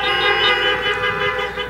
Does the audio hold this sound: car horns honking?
yes